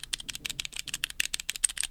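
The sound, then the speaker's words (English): Rapid, uneven clacking of keystrokes typed across a mechanical keyboard switch tester holding a variety of different key switches, roughly a dozen sharp clicks per second, fairly quiet, with no voices. “I've typed across it, and so my fingers are on different types of keys, and it feels terrible.”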